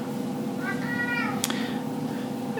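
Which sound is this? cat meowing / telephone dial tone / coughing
cat meowing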